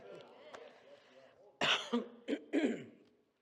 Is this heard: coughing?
yes